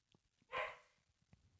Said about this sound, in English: What the fuck are these dogs barking at, eh? Oh, not good.